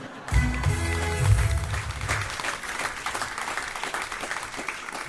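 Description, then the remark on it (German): Soft patting as a man pats himself on the shoulder: a quick run of muffled thumps at the start, then a steady brushing, clapping-like rustle that continues without any talking. “Er klopft sich auf die Schulter.”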